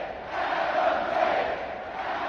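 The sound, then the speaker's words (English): A crowd in an AEW video game video, from a TV taping of an AEW event, cheers in a steady, dense roar that holds at an even loudness for a couple of seconds, with no single voice standing out. “I am part of a crowd.”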